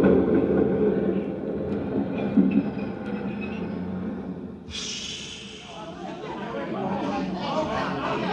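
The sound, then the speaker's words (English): Busy subway station ambience at 59th Street: a heavy train rumbles, then a sharp hiss of brakes or air cuts in halfway through while a crowd murmurs steadily underneath. “Joe Kendall worked in the change booth in the subway station at 59th Street.”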